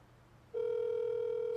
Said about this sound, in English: Oh, you're calling him? You calling him? Okay, it's ringing. I hear it ringing. Hold it up to the mic.